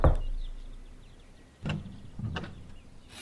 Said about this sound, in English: I employed the knocker at number 14, Northwest Beecher Street, as Abigail and I stood alone in the bracing sunrise.